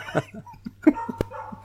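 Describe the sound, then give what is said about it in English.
A dog barks several times in quick, irregular succession, the short muffled barks over a low steady hum, with a sharp click near the end. “You can hear that dog.”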